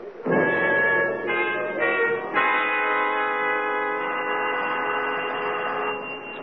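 A doorbell rings out as a quick series of bright chime tones, then settles into one long, steady, ringing note that holds for several seconds before fading slightly. No voices.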